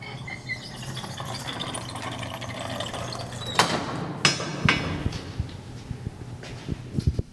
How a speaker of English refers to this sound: So we can open up this original door that Oklahoma zinc miners tunneled underneath 5th Street to get from the Phil Tower to the Phil Cave.